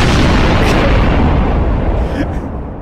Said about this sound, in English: Explosion.